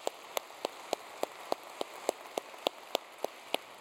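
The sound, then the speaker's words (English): An audience claps for a guest speaker: steady, evenly spaced claps, about three per second, sharp and fairly faint against a soft background hiss. No one speaks over the clapping. “I know that it's not what he wants and it's not why he's here, but you're a guest speaker, so we get to clap for you.”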